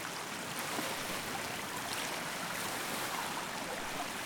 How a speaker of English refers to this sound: Does the water continue to drain? Yes. The water is beneath me now. I'm on the ladder watching the water go down.